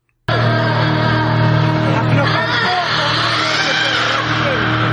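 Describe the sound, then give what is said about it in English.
A woman screams loudly and without pause for about five seconds, her pitch wavering up and down over a steady low hum. The scream starts abruptly. “Now it's time for this week's Woman Screaming.”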